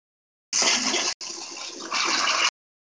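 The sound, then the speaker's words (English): A toilet flushes, a loud rush of water lasting about two seconds, with a momentary break and a renewed surge before it cuts off abruptly. No one talks. “You flush a toilet?”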